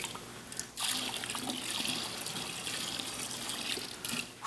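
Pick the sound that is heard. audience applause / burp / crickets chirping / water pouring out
water pouring out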